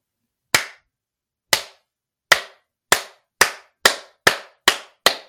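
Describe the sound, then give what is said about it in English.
A series of nine sharp, loud hand claps in a dark, musty cabin room in a forest, spaced about a second apart at first and then coming quicker and quicker, each ringing out briefly in an otherwise silent space. “In the dark and musty room, the couple counted 50 claps.”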